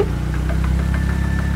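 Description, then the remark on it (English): A car engine is hurriedly started and the windows are rolled up; it runs at a steady idle, a loud low rumble with a faint rhythmic pulsing and a thin whine on top, with no voices. “He hurriedly fired up the car engine and rolled up the windows.”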